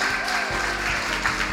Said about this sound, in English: Rounds of applause.